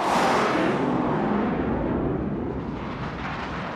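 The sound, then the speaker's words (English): A bomb strikes a mansion in a high-order detonation, a powerful blast that roars with dense, rumbling noise, starting at full force and slowly ebbing over a few seconds, with no voices present. “Impact with high order detonation.”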